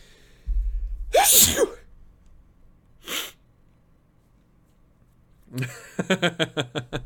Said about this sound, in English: I'm going to sneeze. It's on its way.